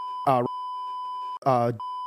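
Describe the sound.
A steady, high censor bleep tone, beeping out people's names, runs through the whole moment while two short bursts of a voice break in over it, one near the start and one near the end.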